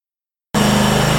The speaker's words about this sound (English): All right, it is a little bit loud in here. It's going to get a little bit better here shortly. I apologize. We are just finishing up with the racing, and that's what happens when you're at the track.